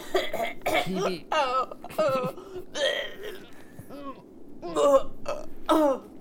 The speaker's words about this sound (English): reels in pain, coughing, and hacks up some ketchup. Hacks up some ketchup? Is that how that works?